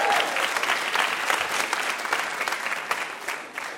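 An audience claps steadily, a dense, sustained patter of many hands that stays loud throughout with small swells, no voices standing out.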